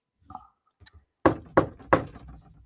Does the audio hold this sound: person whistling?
no